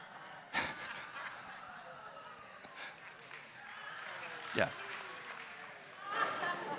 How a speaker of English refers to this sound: Let this go down as the first dad joke in history to get an applause from a whole congregation of people.